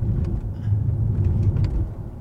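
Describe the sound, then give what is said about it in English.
A large car drives over a crest with a steady low rumble of engine and road noise, holding even in loudness throughout, with no voices. “No problems with power at all here.”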